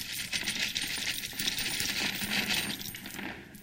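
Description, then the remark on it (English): A steady stream of coins poured into someone's cupped hands during a demonstration, a dense, continuous metallic jingling and clinking that holds for several seconds before thinning out at the end. “I'm just going to pour whatever you can hold on to.”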